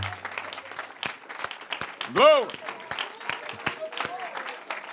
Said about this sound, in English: Come on, let's clap our hands to the Lord and praise him. Thank you, Jesus.